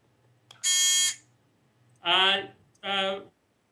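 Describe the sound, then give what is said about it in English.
A loud buzzer sound effect blares three times: a longer, higher-pitched harsh buzz, then two shorter, lower buzzes in quick succession, with only faint background noise between them. “Every time I start to talk, you buzz me.”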